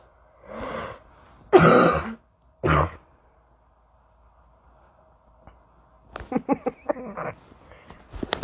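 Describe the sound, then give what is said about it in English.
Three harsh, breathy coughs, followed after a pause by a quick, rattling run of short bursts like a fit of coughing or throat clearing. “I coughed too hard.”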